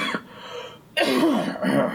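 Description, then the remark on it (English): A single abrupt, harsh cough bursts out, then trails into a rough, throaty vocal rasp, with another brief throat noise following a moment later. “Do you need your cough pillow?”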